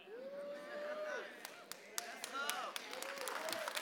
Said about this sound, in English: You ought to clap your hands a little bit better than that.